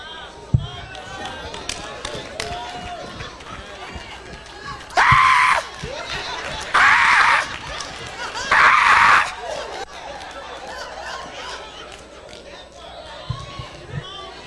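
An audience shouts and murmurs, broken by three loud, sustained screams in quick succession, each lasting about a second, rising above the busy crowd noise before it settles back down.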